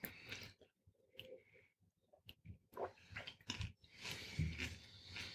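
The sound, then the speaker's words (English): Crunchy chewing of buttery popcorn, a burst of wet crackling bites and mouth noises that start, pause briefly, then resume louder and more continuous toward the end. “And I'll quietly eat a little piece of popcorn.”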